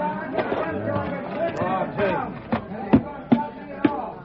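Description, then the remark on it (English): A crowd running off, a confused babble of many voices shouting and calling over one another, broken by a few sharp thumps and clatters toward the end. “That crowd is still running.”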